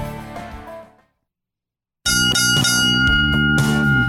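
three bell rings

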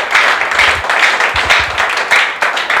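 audience clapping hands

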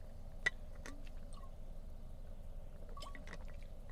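drinking water

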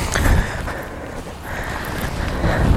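strong wind blowing outdoors

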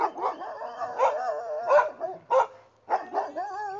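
large dog barking

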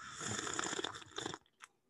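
slurping tea

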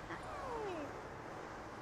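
dog

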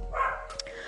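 dogs barking

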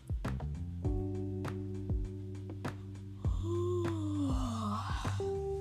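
a person yawning

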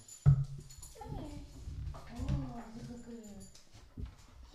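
dog whining

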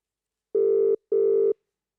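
outgoing phone call ringing

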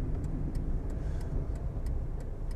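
inside a moving car

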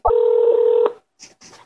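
telephone keypad dialing tones

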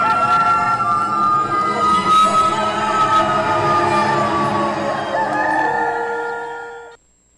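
rooster crowing

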